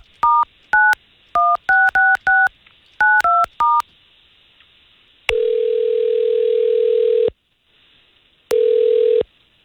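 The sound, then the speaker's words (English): A quick run of about ten telephone keypad tones, each a short dual-pitched beep, as a woman's phone number is dialed, followed by a long steady dial-type tone, a pause, then another shorter burst of the same tone. No voices. “All we're going to do here is get her phone number and see if we can call her.”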